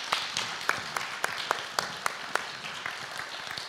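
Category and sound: crowd, round of applause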